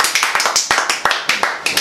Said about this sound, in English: Hold your applause.